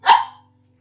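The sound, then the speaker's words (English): A dog lets out one brief, high, plaintive whimpering yelp that fades quickly, with no talking and only a faint low hum underneath. “A little sad little voice.”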